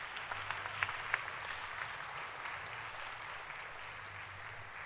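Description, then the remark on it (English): An audience claps steadily for a woman, a dense wash of many hands with a couple of sharper single claps standing out early on, sustained at an even level throughout. “Clap your hands for her.”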